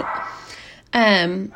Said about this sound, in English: I'm so sorry, my dog is barking. I don't know how to make her stop.